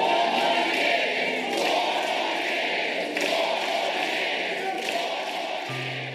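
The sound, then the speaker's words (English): A large crowd at a President Biden rally chants "four more years" in unison, drowning out protesters, a loud, steady roar of many voices with a repeating rhythmic pulse and no single speaker standing out. “The protesters were escorted out and eventually drowned out by chants from the crowd of 4 more years.”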